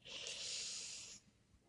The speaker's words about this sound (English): So we're gonna go into a really quick grounding exercise just to bring us back to a healthy and peaceful place. So I want everybody to take a deep breath in.